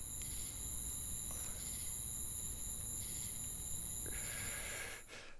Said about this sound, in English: We heard the crickets on that one.